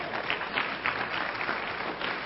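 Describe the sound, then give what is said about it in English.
An audience claps steadily at news that a man has agreed to study the Bible, a dense, continuous patter of many hands, with a few slightly louder swells along the way and no voices heard. “Hey, man, that's a good thing to clap about.”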